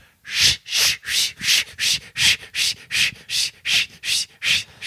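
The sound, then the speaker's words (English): A voice imitates jingling bells with rapid, bright, hissy bursts from the mouth, about a dozen evenly spaced pulses in a steady shaking rhythm, fairly loud and with no talking. “Hey, this is my impression of jingle bells, like actually jingling bells, made just from my mouth.”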